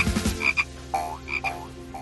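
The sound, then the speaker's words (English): A small green Kuranda tree frog, an endangered species, croaks by a rainforest track in a quick series of short, bright, chirping calls, clear with no voices, repeating several times over a couple of seconds. “You almost squished a Kuranda tree frog.”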